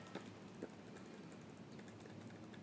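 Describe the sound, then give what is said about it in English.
Imitated typewriter typing: a quick, irregular patter of soft clicks and taps, fairly quiet, running steadily for a few seconds with no talking. “And they're all typing away at their little typewriters. Like this.”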